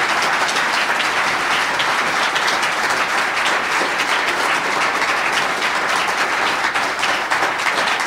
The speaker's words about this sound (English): And thanks everybody here for being here tonight at the Hamilton Public Library. You could have been anywhere and you were here. Thank you so much. Let's have a very large round of applause for our panel here.